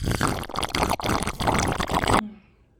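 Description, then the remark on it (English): Water pours steadily into a wine glass for about two seconds, a bright splashing stream that stops abruptly, leaving a faint ringing tail. “Get you a wine glass, a dollar at the dollar store”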